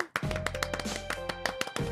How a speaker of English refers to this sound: Oh, wait, we usually clap for him. So let's do it for Mike Fury.